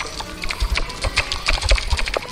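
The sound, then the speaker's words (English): A voice imitates a creature with a rapid series of loud, sharp mouth clicks, irregular, filling the short stretch with no talking. “She sticks her head up into the air and she shrieks, and she makes a series of loud clicking noises.”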